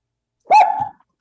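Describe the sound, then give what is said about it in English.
A dog lets out one short, sharp, loud bark, with quiet before and after and no voices. “Well, the dog obviously disagrees with that.”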